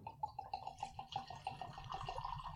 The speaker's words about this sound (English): and I have Sazerac rye. And this stuff is also made by the Buffalo Trace Distillery. I believe so. And yeah, it's pretty damn good. So giving it some smells. Terry Bradshaw, yep. Y'all. But, and Sazerac rye. Let's give it a little pour here.